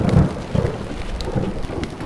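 Steady rain pours down in a thunderstorm, with deep rumbling thunder rolling underneath and a dense hiss of drops throughout. No voices are heard.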